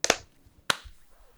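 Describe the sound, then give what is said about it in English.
A sharp hand clap for audio sync with a quick double attack, then another crisp smack about half a second later, otherwise quiet with no talking. “All right, clap sync. 3, 2, 1.”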